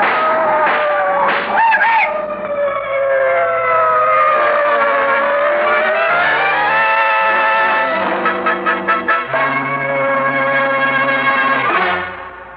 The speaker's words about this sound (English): Cribbit, those cars! What the... They're coming this way! Jump quick, they'll hit you!